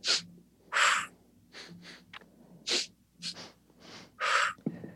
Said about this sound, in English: And breath work, you know, breathing in for two strokes quickly, out one.